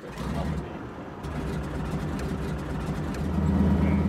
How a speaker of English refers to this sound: Chris, Heather, and I pile into the tiny plane, and the pilot, Dennis, fires up the engine.